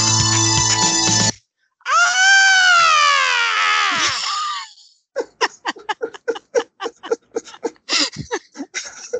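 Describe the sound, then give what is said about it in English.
A brief burst of dense music, made for a fake slasher film trailer, cuts off, then a loud, sustained scream added to the piece rises and wavers for about three seconds, followed by a run of rapid, choppy, giggle-like vocal bursts. “Added the scream like you said. It's better that way now, actually.”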